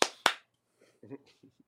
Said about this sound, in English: And that's how you clap without clipping.